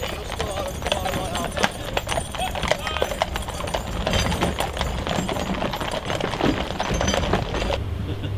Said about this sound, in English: So many horses.